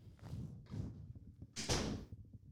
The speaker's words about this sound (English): Can you close the door, by the way?